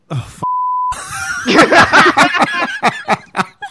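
A single steady censor-style beep, about half a second long, cuts in abruptly, followed by several people breaking into breathy snickering and chuckling laughter.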